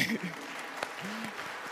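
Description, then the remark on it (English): An audience claps in a steady, dense patter that holds at an even, moderate level for the whole moment, with faint voices and brief vocal sounds mixed into the applause. “You can clap, it's okay, sorry.”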